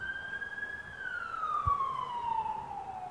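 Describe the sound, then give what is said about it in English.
An emergency vehicle siren wails in a single sustained tone that holds steady, then slowly slides lower in pitch, fairly loud above a faint background rumble with no voices. “And if that person died with that siren, they died and they went to hell”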